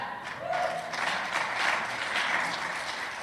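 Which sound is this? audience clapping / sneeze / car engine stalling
audience clapping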